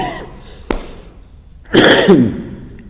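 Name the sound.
coughing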